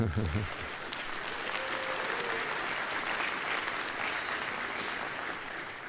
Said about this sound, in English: I know that in your hearts your applause is for her, and I agree.